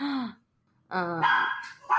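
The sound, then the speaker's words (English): Small Pomeranian dogs, Scone and Macaroon, barking in sharp, high-pitched yaps: a few loud bursts with a brief pause between them and no talking. “And we also have dogs, so... They're Pomeranians, and their name are Scone and Macaroon, and they are my fluffy little weirdos.”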